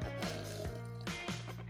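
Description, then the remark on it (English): Someone opens a peach-flavored (Peach Out) kombucha bottle and takes sips, with soft liquid sloshing and several brief bursts of bottle handling spaced irregularly over a low steady hum. No one speaks. “And hold on, let's see what I'm sipping on tonight.”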